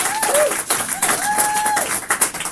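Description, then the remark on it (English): A crowd claps steadily and loudly while voices shout and cheer over it, lifting up a shout of praise because someone has accepted Jesus, with one voice rising in a long sustained holler through the middle of the burst. “So can we lift up a shout in here?”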